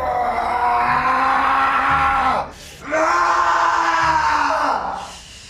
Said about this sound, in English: You have … going crazy here, obviously, with the screaming at the end, and rightfully so.